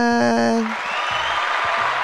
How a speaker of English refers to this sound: Rapid fire. That was my applause for you.